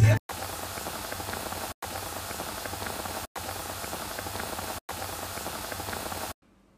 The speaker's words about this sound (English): That was the sound from the last episode of the pod, which was a pan of bubbling water on the stove. Mm. We'd boiled a pan of water ready for cooking, and I thought it was a good idea.